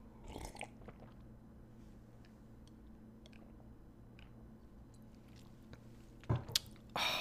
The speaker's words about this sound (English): Yeah, I need to sip on some water. This break brought to you by hydration.